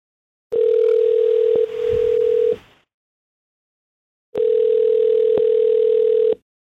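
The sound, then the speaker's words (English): An outgoing phone call placed from a radio show in the Bay Area rings twice, each ring a steady, loud electronic tone lasting about two seconds, separated by a pause of silence, with no one talking. “Let's call him and figure it out.”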